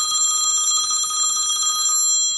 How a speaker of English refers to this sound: What's that? Oh, it's my cell phone. It's here in one of my shopping bags under a sweater.